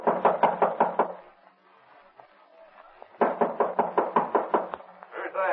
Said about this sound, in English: Open the door. Who is it? Open up. All right, don't break the door down.